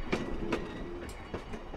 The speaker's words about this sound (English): Which is why, for now, the trains are still running and drawing people to Cass, West Virginia.